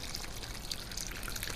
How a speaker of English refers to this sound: Sims stopped to water the plants in the store before we sat down to chat.